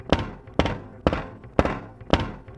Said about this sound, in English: More banging against the door.